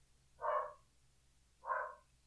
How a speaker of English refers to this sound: Can I stop my dogs from barking in the middle of a sober moment on my podcast? Probably not.